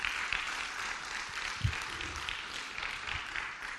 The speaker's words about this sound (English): Come on, if you believe that, give him a great round of applause.